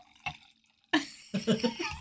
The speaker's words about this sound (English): Here, I'm going to pour a glass of wine. Listen to this. Okay.